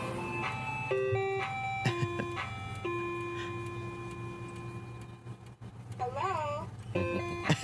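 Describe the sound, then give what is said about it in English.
A truck's loudspeaker plays a tinkling, steady jingle over a low engine hum, then briefly calls out an amplified, warbling greeting before the melody resumes. “I actually found, this isn't your truck, because I think it's not, you said it doesn't match the hello, but here you go.”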